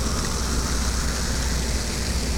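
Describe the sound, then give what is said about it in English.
A steady, dense fizzing hiss of bubbles as a drink from a just-uncorked bottle is poured for an anniversary toast, continuous and fairly loud for the whole stretch, with no voices over it. “You hear the bubbles? Listen. Ooh, we're pouring.”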